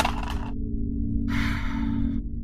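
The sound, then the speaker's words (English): Dice clatter and rattle in two short bursts as a player rolls "plus cool" in a role-playing game, a brief tumble followed by a longer rolling scatter, over a steady low background hum. “I was trying to get to use my sharp instead, but I'll roll plus cool.”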